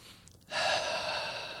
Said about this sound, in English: The B in ABRA stands for breathe. Breathe. Take a breath now.